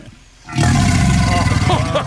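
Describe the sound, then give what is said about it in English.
A loud, deep, rumbling roar bursts in after a quiet half-second and holds steady for over a second and a half, harsh like an alligator's bellow, as a man feeds the alligator. “Maybe that's a pleasure sound.”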